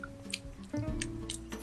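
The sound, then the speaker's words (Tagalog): Wet, squishy chewing sounds, a handful of irregular moist smacks and squelches over a low, steady background hum, with no talking. “Nguya, yan eh.”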